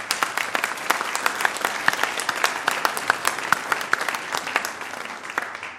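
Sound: church audience applauding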